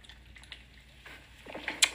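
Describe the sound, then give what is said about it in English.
A quiet pause ends with a short sip of a drink: a few soft wet slurping sounds and a small sharp click of lips. “Let me sip my...”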